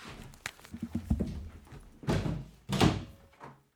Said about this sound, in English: I'm going to quickly shut the door. Hold on a second.